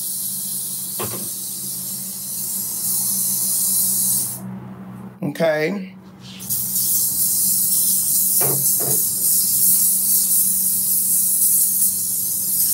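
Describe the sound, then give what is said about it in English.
A steady hiss of cooking oil spraying from an aerosol can onto pastries to give them a shine runs almost continuously, pausing briefly while someone says a single word, then resuming just as loud. “You get some oil sheen, okay? You spray on here.”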